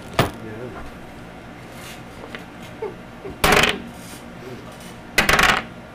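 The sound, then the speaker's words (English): Dice clatter across a hard tabletop in two short, rattling rolls a couple of seconds apart, fairly loud, after a sharp click at the start. “Until I took the dice out.”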